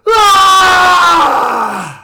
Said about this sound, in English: And at that moment, a thunderous scream of rage echoes from above you.